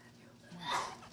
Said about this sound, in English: Bless you.